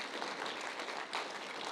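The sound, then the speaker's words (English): An audience claps together after a prayer during a church service, a dense, steady wash of many hands with no single claps standing out, holding an even level throughout with a slight swell near the middle. “Clap.”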